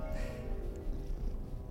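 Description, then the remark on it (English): A cat purrs steadily, a low rumbling vibration that keeps an even pulsing rhythm throughout with no voices over it. “What's a nice cat like you doing with a crazy old light like him, eh?”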